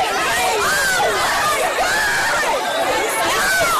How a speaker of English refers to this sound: Look at this crush of shoppers in a Chattanooga Victoria's Secret pink store. The stampede over Sherpa jackets, people seen shoving each other, one sales rep climbing on a table to escape the crowd.